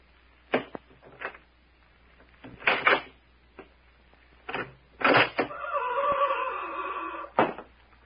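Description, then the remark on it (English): A door creaks open with a drawn-out squeal, framed by several sharp wooden clunks and thuds, ending with a firm shut; no voices are heard. “Now, when I shut the door behind him, we take him”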